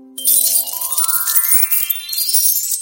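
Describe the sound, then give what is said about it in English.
Coins clink and jingle in a tailor's purse, a bright, steady metallic tinkling with ringing tones that climb upward in pitch over about three seconds, with no voices. “Coins clinked in the tailor's purse, while hardly anyone came to the shoemaker.”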